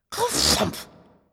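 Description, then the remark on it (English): A voice imitates an old bed creaking as someone flops onto it: one breathy, groaning burst lasting under a second, fairly loud, then a short fading tail. “Next, she heard him fall into his creaky old bed, and it sounded like this.”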